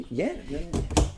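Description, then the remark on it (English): A homemade pantry cupboard door, made out of rubbish and set in an old fireplace, swings open, a brief creaking sweep followed by two sharp wooden clacks as it releases and settles, with vocal sounds mixed in. “This is my pantry, which is made in the old fireplace where there used to be a one fire stove. And did you make these doors?”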